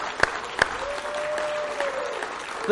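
A crowd claps steadily for a few seconds, a dense wash of applause with a few sharper claps standing out, and a faint sustained tone running underneath partway through.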